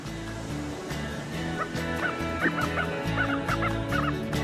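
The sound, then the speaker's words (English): Several birds call over and over in short, overlapping chirps and squawks, fairly close, above a steady low rhythmic backdrop, with no talking. “Look, more birds.”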